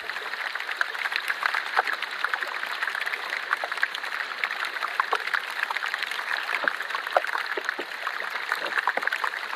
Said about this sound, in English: So then when we pop that piece of ice in water and it starts melting, and the gas just starts bubbling out of that and generates a little bit of fizz in the ice.